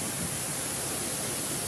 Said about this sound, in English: So much rain in San Diego, a tower of water was seen erupting from a manhole today.